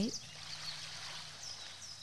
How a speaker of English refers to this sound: But they have so many rainy nights, rainforest meditation, birds in the rain, low tide waves. I'm curious. Let's see. I love waves. I like it.